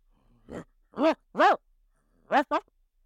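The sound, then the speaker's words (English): A person imitates a dog's barking with five short, voiced woofs, loud: three spaced barks, a pause, then a quick double bark. “The sound of a sound of a dog. Yes, a dog.”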